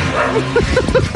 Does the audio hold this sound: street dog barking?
yes